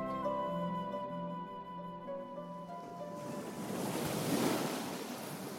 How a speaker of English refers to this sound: Now, as I reached the cliff edge overlooking the southeast beach, any sound of the excited crowds back at the cafe far off behind me had long since faded, replaced by the crashing sound of waves over sand down below.